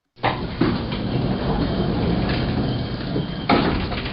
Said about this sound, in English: That was a lift door closing. Or an elevator door closing for our American people.